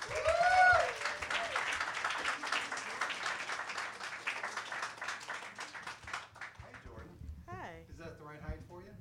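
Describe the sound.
A crowd at a poetry reading breaks into dense, steady applause for a poet, a recent Brooklyn Poets Fellowship finalist, with a brief whistle at the start; the clapping fades after about six seconds as a single voice begins speaking.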